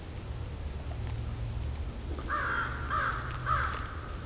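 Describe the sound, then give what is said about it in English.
Three harsh, nasal caws from American crows in quick succession, clear, set against a steady low rumble of outdoor background noise. “There goes the crows. These are American crows.”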